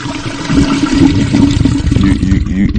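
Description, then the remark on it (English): A toilet flushes loudly, a steady rushing swirl of water that runs for a few seconds without pause. “We gonna flush that.”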